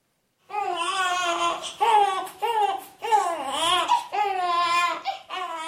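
An infant cries in a run of loud, high-pitched wails, each lasting a second or so with rising and falling pitch, separated by brief gasping breaks. No other voices are heard.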